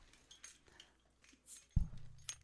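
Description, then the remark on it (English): Keys jingle and clink softly, then a keychain bottle opener pries off a cap with a dull pop, followed by a brief bright metallic tick as the cap comes free. “I need a popper for the topper.”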